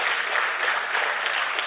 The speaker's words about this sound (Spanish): Vamos a dar un aplauso, vamos a dar un aplauso.